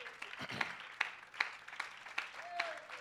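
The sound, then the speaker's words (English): An audience at a church service claps hands in praise to the Lord, a steady wash of applause with sharper rhythmic claps roughly every half second, plus a few raised voices mixed in. “Give the Lord a good hand and clap of praise.”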